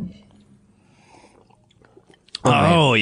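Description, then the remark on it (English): Quiet mouth sounds of someone taking a final sip of beer and swallowing for about two seconds, followed abruptly by a loud, drawn-out vocal exclamation. “Final decant. Final sip.”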